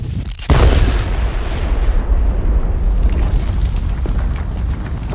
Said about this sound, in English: You feel the rumble, and then you hear the explosion.